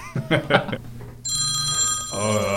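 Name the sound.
telephone bell ringing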